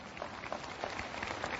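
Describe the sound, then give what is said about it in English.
Audience applause: a steady, dense wash of many hands clapping at once, moderately loud and sustained throughout, with no voices over it. “And this, you can clap for that.”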